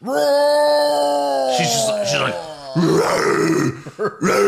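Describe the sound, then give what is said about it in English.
A voice imitates a female TV show character's loud roar: a long, strained, pitched bellow that slowly sags in pitch, breaking into rougher, raspy growling bursts before cutting off with a few short gasps. “Then the worst part of the show is when she roars.”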